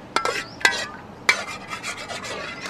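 A metal spatula scrapes hard against a wok over a charcoal fire in three sharp strokes as another batch is stir-fried, followed by rapid rasping stirs and a faint sizzle, with no talking.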